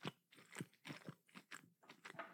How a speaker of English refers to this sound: These look amazing, actually. I'm going to munch into them. Here we go.